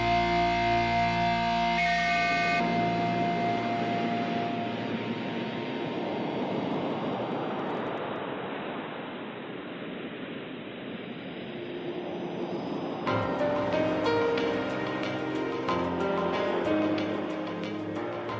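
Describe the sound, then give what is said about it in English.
Music gives way to a loud, rushing wash of ocean-wave sound effect, used as a transition between two songs on an album, that swells and recedes for several seconds before the next song with bright, tonal instruments comes in. “It's just sound effect of an ocean and using that to kind of tie the two songs together.”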